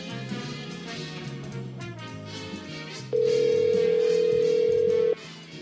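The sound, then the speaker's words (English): A single loud, steady ringback tone from an outgoing phone call to a man sounds for about two seconds over a continuous background of music. “Where are you at? Calling him.”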